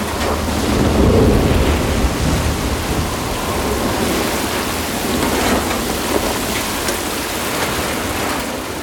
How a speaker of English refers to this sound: effects of the thunder, rain, wind, shutters banging, all those kind of noises that are indigenous to storms.